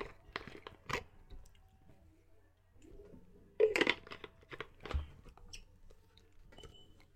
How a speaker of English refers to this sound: Take a shot every time I drink water. You can probably hear me unscrew the lid.